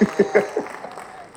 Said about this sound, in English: So go ahead and, you know, first round of applause for this episode. First round of applause. We're going to put that in post. Round of applause.